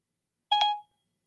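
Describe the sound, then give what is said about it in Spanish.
A short, bright electronic chime rings out once, two quick tonal notes blending into a brief harmonic ding that fades within about a third of a second, clear with no voices: the Siri voice assistant activation chime on a phone, triggered by saying "hey Siri" without touching any button. “Usted coge ahora y le dice a Siri, hey Siri, escuchen. ¿Ustedes oyeron eso?”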